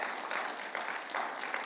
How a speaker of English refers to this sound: We haven't had an opportunity to sing today, so let's just give the Lord a round of applause today. Give him some praise.